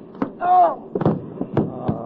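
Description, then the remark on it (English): A brief scuffle in which a railroad cop is punched and knocked out: a short pained grunt or cry, then several hard, thudding punch impacts at irregular intervals, each a sharp blunt whack over a low rumble of movement. “Now, hey, son, you knocked out a cop.”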